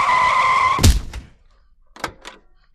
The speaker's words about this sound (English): Somehow I reached the road, a little back road, and as I ran into the road, a Jeep came flying towards me.